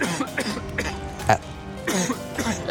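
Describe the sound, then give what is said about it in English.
A voice acts out a string of harsh, ragged coughs, several rough bursts in close succession with wet, strained throat noises between them, fairly loud. “She drops to her knees, coughing.”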